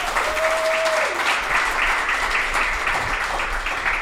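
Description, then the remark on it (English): An audience at Songbirds applauds steadily throughout, a dense wash of many hands clapping at even volume, with a brief faint tone in the first second and no talking over it. “Yeah, if you want to give another round of applause, it'd be great.”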